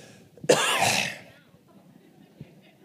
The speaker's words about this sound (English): Now I'm going to cough and hack for just a second.